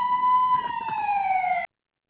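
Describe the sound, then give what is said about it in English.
A single long, shrill police whistle blast during a foot chase after a bank robbery holds a steady piercing tone that drifts slightly lower before cutting off abruptly, with a faint low rumble underneath and no voices. “A foot chase is taking place with the sound of whistles.”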